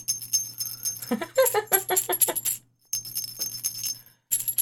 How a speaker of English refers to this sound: these huge-ass truss bolts are in my pocket. You can use them as bells for Christmas. Oh. I mean, listen. This is the truss bolts. And this is an actual bell.